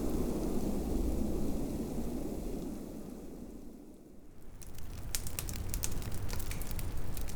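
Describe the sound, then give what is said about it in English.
A Duraflame firelog burns with a low, steady roar, then bright, irregular crackles and pops break out in the second half, fairly loud, with no voices. “Glad my dad still had some Duraflames in the garage.”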